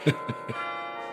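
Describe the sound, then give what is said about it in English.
Carillon bells in a tower, a set of 36 bronze bells spanning three octaves played through a system of levers and pulleys, strike three quick notes in a short descending run, their bronze tones ringing on and overlapping in a long shimmering decay. No voices are heard. “And it's from here, through a sophisticated system of levers and pulleys, that he controls the Y's 36 bronze bells.”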